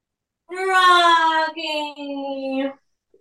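A dog named Rocky whimpers in a drawn-out, high, steady whine, breaking briefly in the middle and then carrying on for another second before stopping. No one speaks over it.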